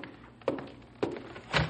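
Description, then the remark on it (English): A door being opened, heard as three solid thumps and clunks spaced about half a second apart, with no voices. “Just a minute. Keep your shirt on. Leave the door up. All right, I'm coming.”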